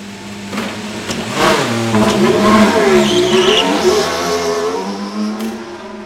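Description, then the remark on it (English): A Formula One car, just lowered from its lift, revs hard and pulls away from the garage, its high-pitched engine note sweeping up and down through gear changes, loud before easing slightly as it departs. “another lowers the car from its lift. And then, just like that, Logan is off.”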